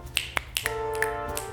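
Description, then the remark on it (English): A handful of crisp finger snaps at a poetry reading, about six, land at uneven intervals, each a sharp, bright click over a steady low hum with a faint sustained tone in the background. “There's no clicks for that.”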